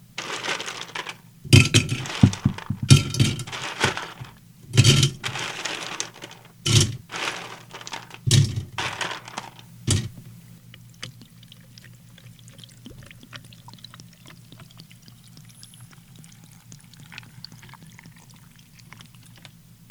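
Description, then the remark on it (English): A vodka drink is poured into a glass: a run of sharp clinks and clatters, then a soft, steady trickle of liquid over a low, constant hum, with no one speaking. “Grr, I need a vodka.”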